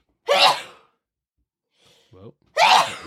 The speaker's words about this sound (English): Bless you.